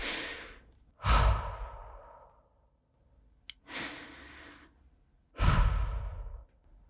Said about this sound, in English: I literally have to take breaks between what I'm saying to breathe because I'm quite nervous. And to say that is quite, you know, I'm going to have a break now. Okay. I'm going to have a break now and show you how my breathing is now.